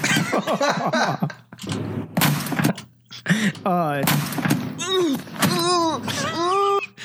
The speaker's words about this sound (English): Do you know how hard it is to do that kind of damage to the top of a microwave? With your elbow?